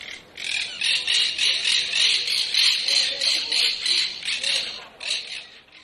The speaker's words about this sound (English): that monk parakeet that I got the noise from Barcelona